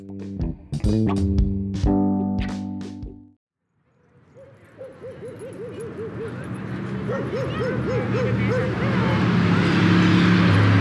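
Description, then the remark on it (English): A dog yaps and yips in quick bursts at a suburban dog park beside a busy expressway, then falls quiet as a broad, steady roar of expressway traffic swells and fills the background, with faint whimpers drifting over it. “Here, we've captured a slice of suburban life, with the dogs enjoying the outside, the people enjoying the outside, and the traffic from the expressway.”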